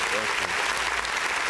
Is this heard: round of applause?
yes